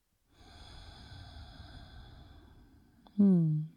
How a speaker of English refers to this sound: So just breathing in and out through the nose, hand to your heart center, feeling into this moment.